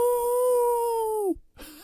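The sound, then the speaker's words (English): A person imitates a wolf howl: one long, loud, steady wavering tone that drops in pitch at the end, followed by a short pause and the start of another rising howl. “oh my, maybe we need to howl again.”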